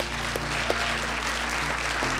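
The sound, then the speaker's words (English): An audience at a Creative Mornings MSP event claps steadily for the speaker, Joe, as the event wraps up, a dense wash of overlapping handclaps at an even loudness with no voices standing out, lasting a couple of seconds. “We just want to be respectful of people's time if they have to go, so let's give Joe a big round of applause.”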